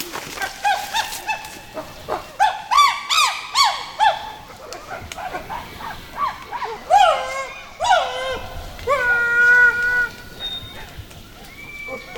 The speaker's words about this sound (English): Out on patrol, the eco guard hear chimps calls in the distance.